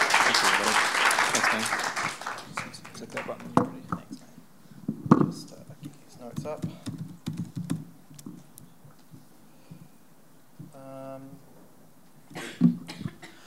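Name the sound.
warm round of applause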